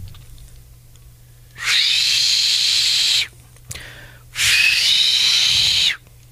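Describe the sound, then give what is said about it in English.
A person imitates a dentist drill with their voice: two sustained, high-pitched whining bursts, each about one and a half seconds long, separated by a short pause with a faint click. “Now, I think I do a pretty good impression of a dentist drill.”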